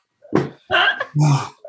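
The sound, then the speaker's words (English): A dog lets out three short, gruff vocal bursts into the microphone, each a throaty woof-like sound separated by brief pauses. “Dude, look at him podcasting.”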